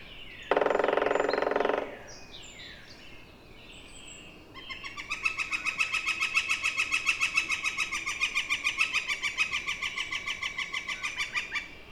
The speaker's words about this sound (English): Moving on to another section of the woods, I come across a woodpecker. A northern flicker. And there's his drum.